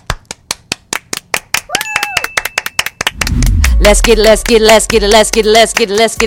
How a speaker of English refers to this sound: Clap, clap, clap your hands.